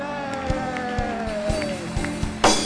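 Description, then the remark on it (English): An audience claps in a steady rhythm, roughly two claps a second, over sustained musical tones, ending in a louder swell of claps and crowd noise. “Some of you are clapping like there's nothing.”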